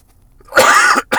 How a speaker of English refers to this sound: And I'm going to cough, too. I know I'm going to cough, and I apologize.